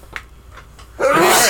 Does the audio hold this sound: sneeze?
yes